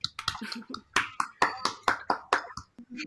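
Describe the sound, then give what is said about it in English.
Hands clap in a quick, uneven series of sharp, bright smacks, about a dozen of them, loud and unaccompanied by talk, with a brief pause before a final few claps. “Yeah, let's all clap to that.”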